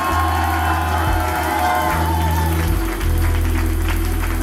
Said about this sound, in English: Come on, give Jesus a great hand clap.